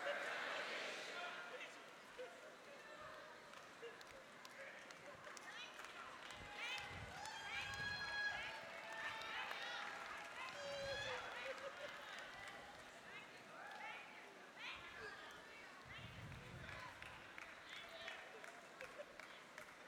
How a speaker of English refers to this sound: Just stomp your feet right now.